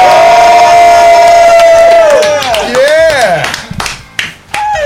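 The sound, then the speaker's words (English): A large crowd of City British Wrestling fans in a stadium roars and cheers loudly as a wrestler wins the British championship by pin, with shouting voices rising and falling over steady applause, dense like a packed crowd erupting. “The audience erupts in rapturous applause and cheers.”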